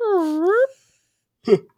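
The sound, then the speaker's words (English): A voice imitates a fart heard on a recording with a single sustained, tonal buzz that dips and then rises in pitch for about half a second, followed after a pause by a short, breathy vocal burst. “And the guy, I'm pretty sure the guy fucking farted. It was like a...”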